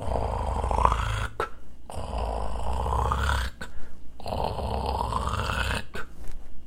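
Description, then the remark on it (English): A person imitates gentle snoring: three long, raspy, rumbling breaths separated by short quiet pauses, steady and fairly loud, with no talking. “Together they took a long afternoon nap, and together they gently snored.”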